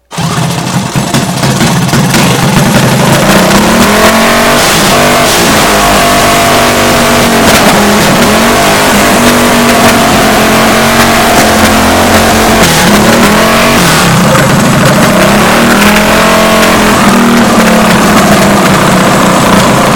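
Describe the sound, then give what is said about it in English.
A rejetted carbureted engine, just idled down after a carburetor idle adjustment, runs loud and steady. Its low harmonic drone rises and falls in pitch as it revs up and settles back repeatedly, with no voices over it. “A little carburetor or idle adjustment?”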